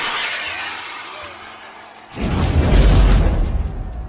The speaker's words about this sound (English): At the top of the round, another ball of fire comes arcing up out of the back of the zombie horde, and it comes crashing down against the front wall right next to the gate.